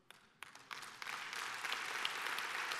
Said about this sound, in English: Let's clap for Pastor George.